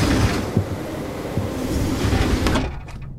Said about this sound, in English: The train stopping. That wasn't supposed to happen, right?